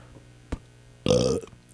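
A single loud belch, a guttural, voiced rumble lasting about a third of a second, preceded by a brief soft thump and followed by quiet.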